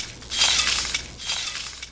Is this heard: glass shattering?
yes